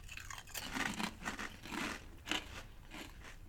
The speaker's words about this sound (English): It's a great chip because it's a kettle chip. Super crunchy. Oh, it's a really solid chip.